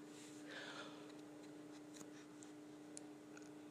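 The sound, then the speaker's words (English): Faint, regular ticking of clocks, soft clicks spaced roughly half a second apart over a steady low electrical hum, with no one speaking. “Which is so clever of the clock gods to make these clocks to go, we're going to synchronize you guys.”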